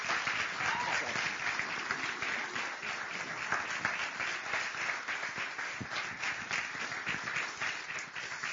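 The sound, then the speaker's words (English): Sustained applause from a crowd for two leaders, one a pastor, for their leadership, a dense, steady patter of many hands clapping at an even level for several seconds, with faint voices mixed in underneath. “And as I do, can you give them a round of applause just for their tremendous leadership in all of this work?”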